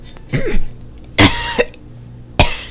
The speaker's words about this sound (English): You're like, and then you like cough it up, and you're like, oh, I can breathe.